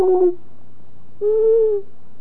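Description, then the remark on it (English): Two low, hollow owl hoots sound in the open, a short one followed after a pause by a longer, steady one, both clear and carrying over a faint background hum. “Now, the owl sound that most people hear is whoop. You hear this whoop. That's an owl sound.”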